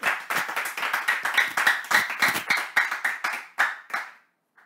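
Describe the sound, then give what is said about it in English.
A burst of hand clapping welcoming Bishop James, a few people's sharp claps overlapping in a quick, uneven patter for about four seconds before stopping abruptly. Nobody speaks. “Now, should we all welcome Bishop James with a hand clap?”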